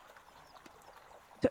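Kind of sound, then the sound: animal, horse hooves clip-clopping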